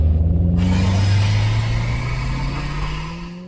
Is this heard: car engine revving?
yes